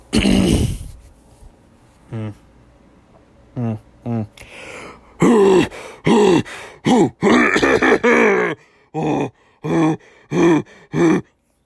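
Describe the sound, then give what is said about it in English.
A string of throat-clearing noises, coughs and grunting hums after eating: a harsh opening burst, a few short voiced grunts, then a rapid run of about a dozen loud rasping coughs and throat noises, with no speech. “After I eat, I tend to cough a lot.”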